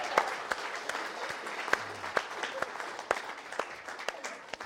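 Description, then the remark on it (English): A church audience applauds steadily as praise to the Lord, a dense wash of hand clapping with sharper individual claps popping out irregularly above it, moderately loud and sustained throughout. “Let's give the Lord a hand clap and a hand praise.”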